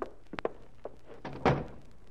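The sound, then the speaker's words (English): A door swings shut with a solid thunk, preceded by a few light knocks and handling clicks, moderately loud. “Close that door”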